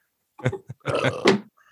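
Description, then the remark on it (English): A few short, throaty burps, fairly loud, ending in a longer drawn-out belch with a rough, gurgling texture. “Stop burping.”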